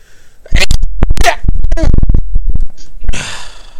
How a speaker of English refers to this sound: That sneeze hurt.